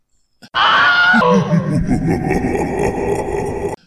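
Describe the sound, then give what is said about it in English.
A loud, shrill train whistle blasts for under a second, then gives way to a steady lower rumbling, chugging noise that continues for a few seconds before cutting off abruptly. “I found the train whistle.”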